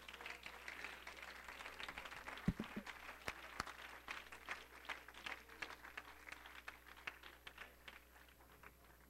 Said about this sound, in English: Oh, let's clap our hands to the Lord one more time.